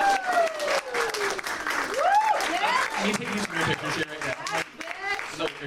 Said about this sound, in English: Yeah, clap it up.